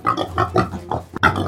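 Hybrid pigs roaming wild in Canada's prairie provinces grunt and snort, a quick run of several rough, throaty grunts tumbling over one another with barely a pause, fairly loud and with no voices.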